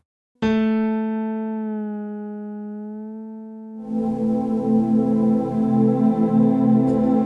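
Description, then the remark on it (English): A bright synthesizer tone starts suddenly and pitch-bends slowly downward as it fades slightly, then a denser, louder buzzing synth texture takes over for the final few seconds. “A pitch bend sounds like this.”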